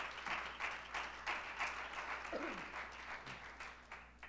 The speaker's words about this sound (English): Go ahead and give the Lord a hand clap of praise one more time.